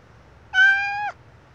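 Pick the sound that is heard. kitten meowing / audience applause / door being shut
kitten meowing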